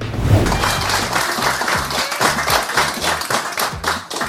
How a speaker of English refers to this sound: First of all, who's clapping in this?